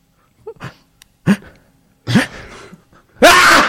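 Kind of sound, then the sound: vocal imitation, imitated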